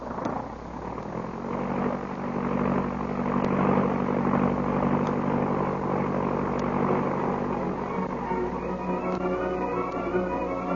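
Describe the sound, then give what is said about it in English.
A propeller airplane's engine drones steadily and loudly, its pitch rising slightly as it revs up for takeoff, with a constant low mechanical hum throughout and no voices. “Well, get in the plane.”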